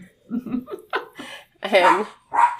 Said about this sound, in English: And she's very protective watchdog barking in the background right now.